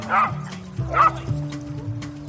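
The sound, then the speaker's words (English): A person imitates a dog, giving two short, sharp barks about a second apart, fairly loud, with a low steady hum continuing underneath. “And although I don't currently own a dog, I do enjoy barking like one.”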